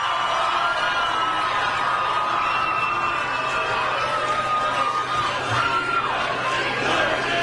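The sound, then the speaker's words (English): A huge outdoor crowd of thousands at the March for Israel rally on the National Mall in Washington chants "USA, USA" in unison, a loud, dense wall of voices that holds steady throughout with no single speaker standing out. “Well, chants of USA, USA from the crowd.”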